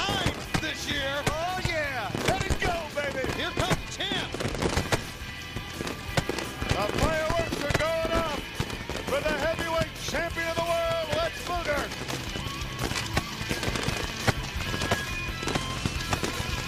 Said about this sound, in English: Hey, we got a little fireworks going here.